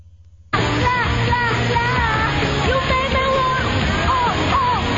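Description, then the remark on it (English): After a brief quiet moment, a played recording of a woman's screams bursts in loudly and continues without pause, her voice wavering and rising over a dense, noisy background. “There's screaming involved.”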